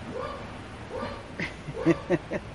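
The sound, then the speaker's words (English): A dog gives a few short, sharp barks in quick succession, fairly quiet, preceded by softer whiny yelps. No one is talking. “And now the dog starts.”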